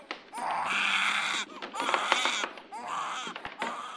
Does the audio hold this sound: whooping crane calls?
no